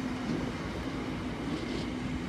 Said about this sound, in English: Choo choo. Choo choo. Now we've even included our train spotters amongst us.